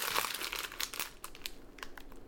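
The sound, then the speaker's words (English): An orange bag of pretzels crinkles and crackles in an irregular burst of sharp, bright rustles lasting a couple of seconds, with no voices. “Those orange bags of pretzels that you were eating before.”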